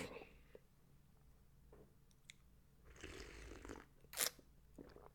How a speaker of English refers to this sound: Quick sip of coffee. Coffee break, boss. Don't mind me, boss.